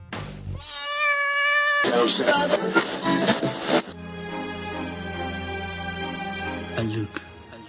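A cat meows loudly, then breaks into a drawn-out, wavering caterwaul that carries on for several seconds, prominent, with no other sounds around it.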